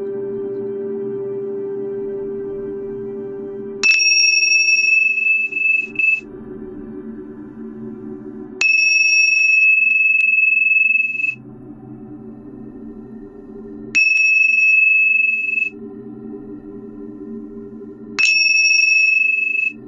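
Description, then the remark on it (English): A bright, clear meditation chime rings four times at slow, roughly even intervals during a guided meditation, each strike sustaining for a couple of seconds before cutting off, over a steady low droning tone. “And now with each chime, imagine the lotus flower blooming and filling the throat area.”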